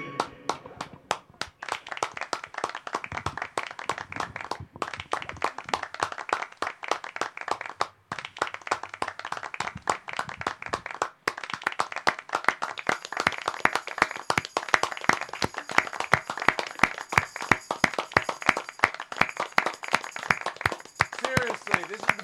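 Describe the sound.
An audience at a Music Appreciation Night show at a mall applauds the keyboard player for over twenty seconds: dense, steady clapping from many hands that stays loud throughout, with crowd voices mixed underneath.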